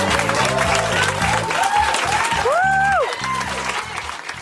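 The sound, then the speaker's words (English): A meeting audience claps loudly and steadily, a dense, enthusiastic roar of applause lasting several seconds, with a whoop or two rising above it before the clapping begins to thin out. “That was some of the most enthusiastic applause of the night.”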